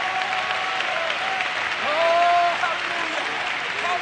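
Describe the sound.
A church audience claps hands steadily in sustained applause to give the Lord praise, a dense wash of many overlapping claps, with a faint voice rising briefly over it midway.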